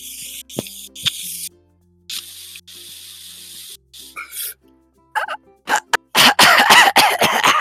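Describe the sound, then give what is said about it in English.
Someone vocally imitates a man inhaling from a liquid-filled lantern bong through a little knob: breathy hissing inhales in several stretches with brief gurgling clicks, ending in a run of loud, harsh sputtering bursts like coughing. “And he like brings the lantern close to his face and grabs it, puts his mouth on the little knob, and inhales. And you hear you hear this.”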